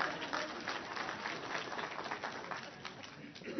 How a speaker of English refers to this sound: Give him a round of applause there.